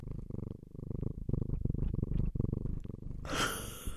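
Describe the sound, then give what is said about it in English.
A female cat purrs in a steady, rumbling rhythm of low pulses, ending with a brief higher, breathy chirp near the end. “She was purring.”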